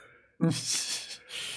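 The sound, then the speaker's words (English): A single drawn-out yawn: a short voiced groan at the start that opens into a long, breathy exhale, with no talking. “Sorry, everybody, for yawn.”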